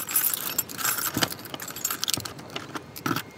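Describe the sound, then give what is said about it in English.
Keys jingle and scrape in the top and bottom locks of the heavy door to Gloria Vanderbilt's apartment, a bright, steady metallic rattle broken by a few sharp clicks as the locks turn. No one speaks. “You have to kind of twist the top lock just the right way, and the bottom lock, and then kind of push with your shoulder.”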